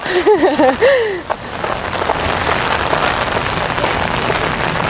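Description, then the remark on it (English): Heavy hurricane rain pounds steadily on big umbrellas in a dense, continuous, loud patter, after a brief voiced exclamation at the very start. “If it was raining like this when I was in class, my ass would probably be in bed.”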